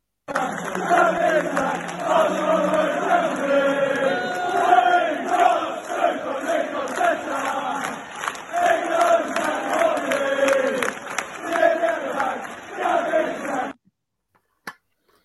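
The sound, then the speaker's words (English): A large crowd of Arsenal football fans in the away end at Brighton cheers and chants together after the game, loud and sustained, with many voices blending into a roaring, sing-song din that cuts off abruptly near the end. “The players, the manager and all the staff came to the Arsenal fans after the game at Brighton.”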